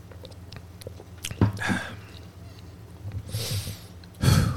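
Quiet sips from a drink, a few wet slurping and swallowing sounds spread over several seconds, with breathy exhales between them and no talking.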